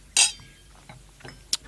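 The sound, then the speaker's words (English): Wine glasses clink together in a toast over a bottle of Ken Forrester wine, a bright, ringing chime followed by a few soft rustles and a second, lighter clink near the end. “But yeah, this looks a fantastic bottle. I don't think I've had this before, but I'm familiar with Ken Forrester wines. Yes. So here goes. Cheers.”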